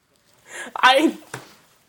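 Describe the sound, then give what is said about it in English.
A person makes a single drawn-out vocal meow, imitating a cat, fairly loud, with a short breathy trailing sound after it. “A catnipped out cat?”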